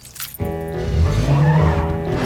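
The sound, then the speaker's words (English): In a film scene, a car zips around another car with Catherine O'Hara in it, with a rising engine roar and a brief squeal of tires. It is loud and lasts a couple of seconds, with no talking. “He zips around her.”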